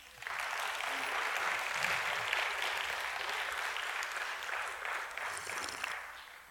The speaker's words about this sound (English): Let me hear you clap.